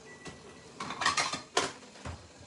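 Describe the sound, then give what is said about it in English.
Dishes clink and clatter as a plate is pulled from a stack, a few bright ceramic knocks over about two seconds, with a sharper clack near the end and no talking. “All right, I'm going to get a plate.”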